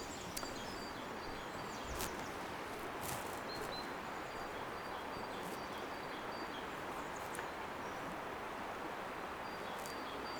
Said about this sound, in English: Just listen to those birds. When your mind wanders, just bring it back to the sounds here, the sounds of the river and the birds.